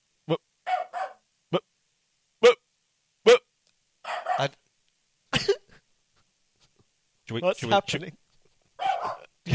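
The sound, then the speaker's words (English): A dog, Billy, barking from the front window at passersby, lets out a string of short, sharp barks at irregular intervals, fairly loud, with muffled voices mixing in toward the end. “She just parks herself by the front window as some sort of sentry that no one asked on. Just barks at anything that passes.”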